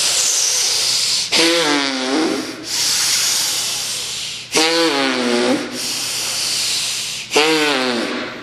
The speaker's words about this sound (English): So looking deep inside the forehead in the space and start breathing long in the hissing breath.